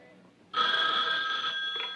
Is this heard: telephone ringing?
yes